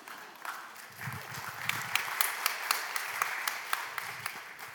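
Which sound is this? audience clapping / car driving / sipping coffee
audience clapping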